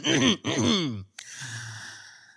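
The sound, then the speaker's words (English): Someone clears their throat with two gruff, voiced bursts in quick succession, then a brief click and a soft, breathy exhale trailing off. “Let me clear my throat for a second.”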